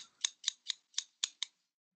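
Scissors snip six times in quick, even succession, each cut a crisp metallic click with no voices around it, then the sound stops.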